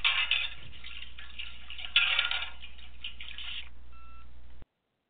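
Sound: washing dishes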